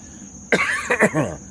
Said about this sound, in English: Still got a little COVID cough here after a month.